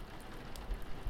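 Soft, steady rain patters in a diffuse hiss, with a few slightly louder drops standing out against the quiet background. No voices are present.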